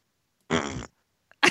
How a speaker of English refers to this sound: It ended with you farting